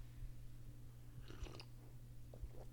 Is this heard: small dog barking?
no